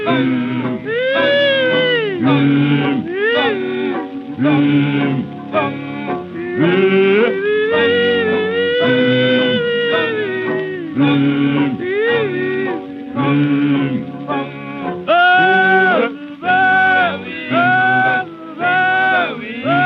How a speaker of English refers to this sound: I'm going to play you a little piece of music that was actually recorded in 1939. Okay. All right. And we're going to start there. Just let me play a little bit of this cut.